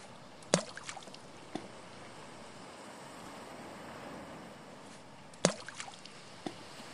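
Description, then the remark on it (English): Gentle cold water laps and washes steadily while a small tied-up wooden rowboat with a single wooden oar knocks and creaks, with two sharp hollow thumps a few seconds apart and softer taps after each. “the boat's all tied up and ready to go, Uncle Abe. Single wooden oar, snorkel, everything just like you wanted”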